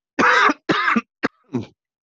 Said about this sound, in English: Wow, coughing on a podcast at this time in history has a fully different connotation.